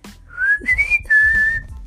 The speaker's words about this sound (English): I can whistle pretty loud, not gonna lie. But I don't ever whistle, though.